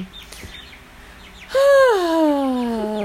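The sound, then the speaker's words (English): A pet bird, as the birds are being separated, lets out a loud, drawn-out squawk that slides downward in pitch and holds for over a second, after a moment of faint, scattered chirps. No one speaks. “Yeah, we're separating the birds here.”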